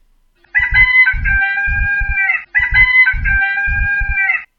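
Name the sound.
rooster crowing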